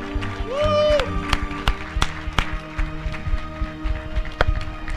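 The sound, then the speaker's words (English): An audience applauds in appreciation of the dads present, claps scattering loosely and unevenly, with a rising cheer or whoop near the start and a low hum of crowd noise underneath. “Will you give a round of applause, appreciation to all the dads in the house?”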